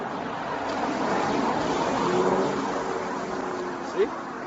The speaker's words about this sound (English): Hold on. Car.